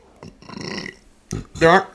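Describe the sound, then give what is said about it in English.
A couple of loud burps into the microphone, a long croaky belch followed after a short pause by a sharper, louder one with a gurgling, voiced rasp. “Those are burps.”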